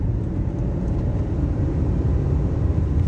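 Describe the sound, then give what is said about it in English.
A car engine revs hard in second gear, a loud, steady low rumble filling the whole few seconds with no voices over it. “Sorry, I want you to hear my engine.”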